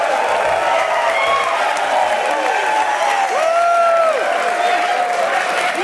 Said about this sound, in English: We got a live crowd here, Tanner. How about that? That's a pretty good crowd. I think they're cheering for you